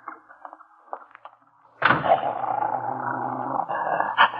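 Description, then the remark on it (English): In hot weather, a big police dog held by a woman and another dog growl at each other, a low rumbling snarl that starts suddenly after a few quieter sounds and continues steadily, rising into a sharper snarl near the end. “Yeah, I guess the big police dog over there don't like your dog.”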